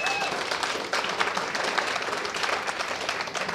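An audience applauds steadily, many hands clapping in a dense, even wash of sound that holds at a fairly loud level throughout, with no voices standing out.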